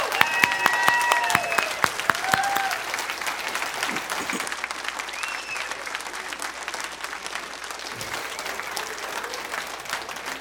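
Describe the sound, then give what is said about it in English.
A crowd applauds standing military veterans, clapping steadily for about ten seconds, a dense wash of hand claps with a few sharper individual claps and faint whistles early on, staying loud before easing slightly toward the end. “Now, let's give them the applause that they deserve for real right now.”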